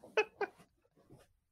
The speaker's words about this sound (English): Can I go let my cat in the room? Because I was going to say, do you want to let your cat in? Because I was going to say, there's a few people in the chat being like, am I hearing a cat? Yes, you can very much hear a cat.